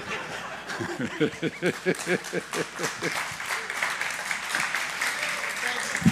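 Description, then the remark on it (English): A crowd applauds steadily for about six seconds, dense clapping throughout, with excited voices and laughter-like whoops rising over the claps in the first couple of seconds. “Thank you for those two applause.”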